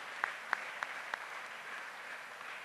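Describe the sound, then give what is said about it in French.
Audience applause for the apostles, a steady wash of soft clapping from a crowd with a few sharper claps standing out in the first second, fairly quiet overall and without any voices. “Applaudissons pour eux.”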